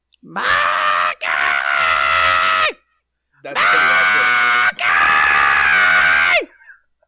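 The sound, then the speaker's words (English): A person imitates a shrill, grating scream, shrieking words in two long, piercing bursts, each briefly broken. The voice is very loud and harsh, with nothing else underneath. “Renge is screaming louder than a train with the most grating, upsetting voice.”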